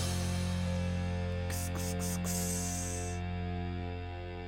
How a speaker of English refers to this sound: It's a solid riff. But just that, again, the grungy, sludgy distortion is so good.